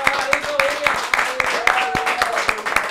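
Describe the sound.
A burst of applause for a guest thanked for being on the show, sharp claps falling in a quick, fairly steady rhythm, mixed with overlapping voices and a few drawn-out vocal tones throughout.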